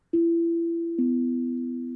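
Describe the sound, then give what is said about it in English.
A two-note chime, sounded as floor tiles compress: a clear, mellow tone strikes, then a second slightly lower note joins about a second later, both ringing out steadily and fading only slightly, with no talking. “So they all compress, and you guys hear a chime.”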